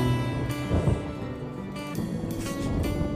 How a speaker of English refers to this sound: They hit the thunder right now.